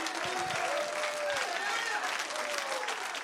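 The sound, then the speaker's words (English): An audience at a worship service, urged to clap their hands and shout, claps steadily and loudly, a dense wash of hands, with scattered voices shouting and calling out over the applause throughout. “Come on, clap your hands. Shout.”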